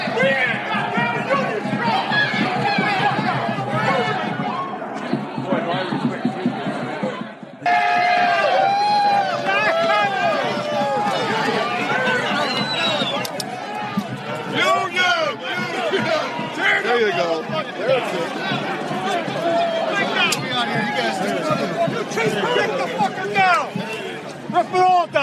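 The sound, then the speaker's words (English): Loud, dense crowd commotion from a pro-union protest crowd at the Capitol raiding a tent of right-to-work supporters: many overlapping voices shouting and chattering at once, a continuous chaotic babble with frequent sharp yells rising above it. “Some of the pro-union crowds raided a tent full of right-to-work supporters, and apparently one person was injured as they did so.”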